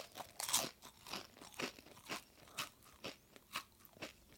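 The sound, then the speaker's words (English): Crisp crunching of a potato chip being bitten into and chewed, with sharp brittle crackles repeating in a steady rhythm about twice a second, loud and dry with no voices. “And we're going to change the crunching sounds that you will hear as you bite into each one.”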